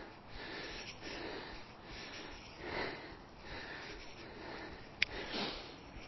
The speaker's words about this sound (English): Try and get this breathing sorted. Get the heart rate down a little bit. deep breaths from inside my belly, out through my mouth.